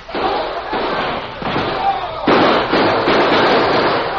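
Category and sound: sound effect, exchange of gunfire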